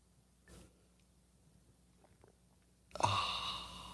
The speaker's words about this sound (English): It's called the simultaneous sip. It happens now. Go.